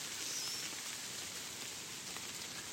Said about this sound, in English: The rain's getting heavier, can you hear?